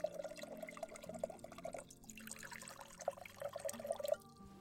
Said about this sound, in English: I believe it's my turn to pour. I believe you are correct.